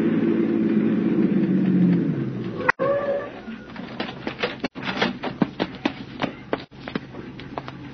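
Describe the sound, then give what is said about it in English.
A car engine rumbles low and winds down as it pulls up to park behind a police squad car, followed by a scattered series of sharp clicks and knocks. “Park behind that squad car pulling up.”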